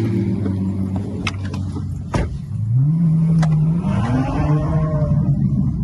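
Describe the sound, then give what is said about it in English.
A supercar engine idles with a deep rumble in Warsaw, Poland, then revs upward in a rising, droning pitch, loud, with a couple of sharp clicks along the way. “Two of my 17 supercars from Bucharest, Romania got put in a truck and brought me to Warsaw.”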